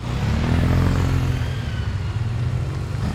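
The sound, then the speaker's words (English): Several motorcycles arrive in the parking lot of Adair Funeral Home in Oro Valley on a Saturday morning as the sun comes up, their engines idling and revving in a steady low growl that swells slightly at the start and holds throughout, with a faint mechanical clatter. “The parking lot is filling up with motorcycles, not a typical sight for Saturday morning.”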